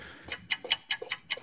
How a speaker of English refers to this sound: play a little alarm clock thing here.